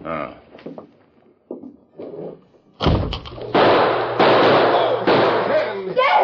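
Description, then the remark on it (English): After a few quiet spoken words, a sharp, loud gunshot cracks out, a bullet knocking a gun from a man's hand, followed by several more harsh, noisy blasts in quick succession. “My bullet just knocked down your gun.”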